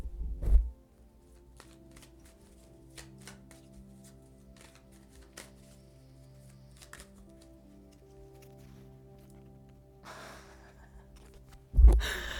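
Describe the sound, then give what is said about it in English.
A deck of cards is shuffled to pull a card, with a brief papery riffle and a few soft flicks over a quiet, steady low hum. There is no talking, and a louder thump comes at the end. “I'm gonna shuffle one right now.”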